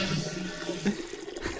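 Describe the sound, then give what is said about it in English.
A steady rush of water, someone peeing into a toilet bowl, fills the short moment at a fairly constant level with no one talking. “Fart start the piss.”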